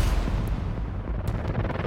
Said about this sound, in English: Until early morning gunshots shatter an American dream.